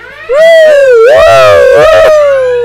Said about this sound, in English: Chen leaps forward and flips the alarm switch. Sirens wail.